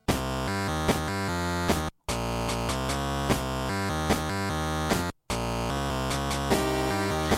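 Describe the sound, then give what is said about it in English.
The video game underground cave theme "Dark Cave" plays: dense, layered, crunchy synth music with a steady pulsing rhythm and sustained harmonies, cutting out briefly twice before resuming. No one speaks. “Yeah, this is Dark Cave. It's one of the underground themes.”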